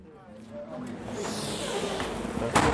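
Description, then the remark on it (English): Someone fumbles with the door of a recruitment agent's office on Regent Street, a door that won't give, a scratchy, rustling scrape of handle and latch building steadily louder, ending with a sharp click as it's pushed again. “Everyone has got a problem opening that door.”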